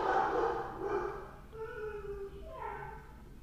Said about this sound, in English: Please ignore the background barking. I live with dogs.